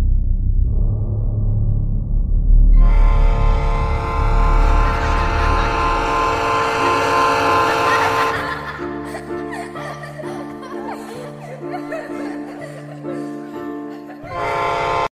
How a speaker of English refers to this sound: No, Tom, you're a train.